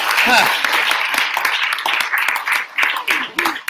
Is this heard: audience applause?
yes